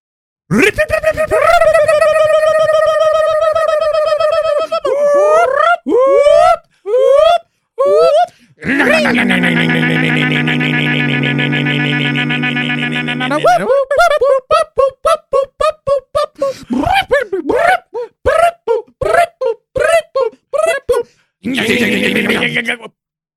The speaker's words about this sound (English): Wow. What an alarm. What? That was a, yeah, that one went all, that went so many different places.